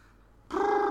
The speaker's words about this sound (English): Oh, hi, cat. Hey, cat. She's sneaking out without a bell.